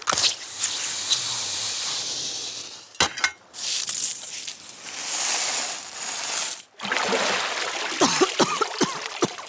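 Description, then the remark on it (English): Loud, churning lake water splashing and spraying almost nonstop as people are pulled out of the water onto a dock, broken by a couple of brief pauses, with sharper splashes and drips toward the end. No one speaks. “Ugh, lake water.”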